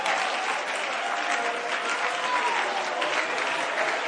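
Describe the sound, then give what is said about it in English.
An audience claps politely and steadily, a dense, even patter of many hands filling the room at moderate volume, with a faint murmur of voices underneath. “I wish somebody would get beyond a little polite clap.”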